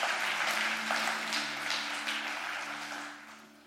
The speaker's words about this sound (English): Y'all are clapping too much.